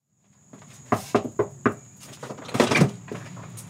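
A front door opens with a quick series of close latch clicks and knocks, then a louder rattling clatter as it swings, over a faint steady high-pitched whine.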